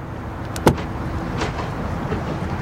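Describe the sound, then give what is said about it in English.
A single sharp click of a car door being unlocked with keys before a test drive, then a softer mechanical rustle as the door swings open, over a steady low background rumble with no one talking. “You'll have to unlock it”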